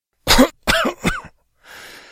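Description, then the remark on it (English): A voiced coughing chuckle: three quick rough bursts of amused coughing, followed by a soft breathy exhale trailing off. No one speaks. “Another coughing chuckle.”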